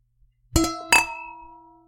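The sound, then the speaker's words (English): Two bright glass clinks, a quick pair of wine glasses touching in a toast, each leaving a clear ringing tone that lingers and fades. Fairly loud, with no talking. “let's clink and let's chug. Cheers.”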